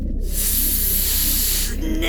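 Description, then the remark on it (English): A voice imitates a snake with one long, loud, sustained hiss lasting well over a second, ending with a brief tonal sound. “Did someone say snake? No, he said snake. Like this. Snake.”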